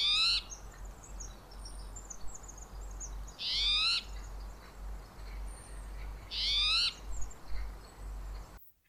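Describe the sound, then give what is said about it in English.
A spotted towhee gives three harsh, raspy, buzzy calls spaced about three seconds apart, clear, over a steady low background rumble and faint birdsong. “That first one was a California scrub jay again, and the second was a spotted towhee.”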